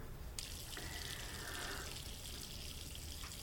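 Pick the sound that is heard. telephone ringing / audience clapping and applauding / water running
water running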